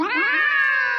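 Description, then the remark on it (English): A single drawn-out cat meow, loud, rising then holding a steady whiny pitch for about a second with no other sounds. “I'm so done with this cat.”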